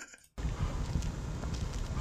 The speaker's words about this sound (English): after he throws a paper bag down, he makes this weird grunting sound. I love the noise he makes.